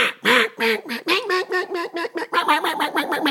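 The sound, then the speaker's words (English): A duck caller blows a rapid, loud run of about a dozen nasal hen-style quacks on a duck call, evenly paced, imitating several hen ducks, with no talking over them. “So as a duck caller, you're making the sound of 4, 5, 6, 7, however many ducks you're trying to emulate.”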